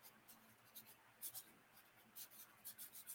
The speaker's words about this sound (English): I got to turn my paper over. We got to start on a new piece of paper for you.